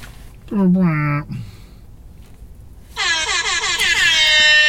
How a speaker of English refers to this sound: Yeah, it's this one. The DJ air horn sound effect. Can you play it?